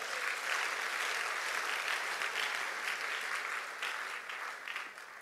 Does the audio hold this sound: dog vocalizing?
no